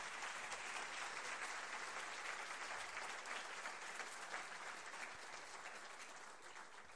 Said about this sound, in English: Let's give them a cheer for that.